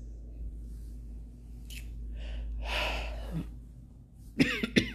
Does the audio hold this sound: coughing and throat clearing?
yes